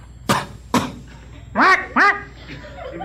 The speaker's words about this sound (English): I just don't want to be stuck with a penguin with a cough. Well, this one does. Listen.